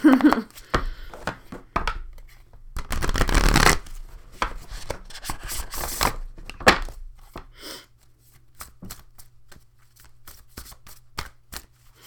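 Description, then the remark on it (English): A Spellcasting Oracle card deck is shuffled by hand, with irregular papery slaps and flicks, a longer dense riffle partway through, then slower scattered taps of cards being handled over a faint low hum. “Hands don't want to shuffle.”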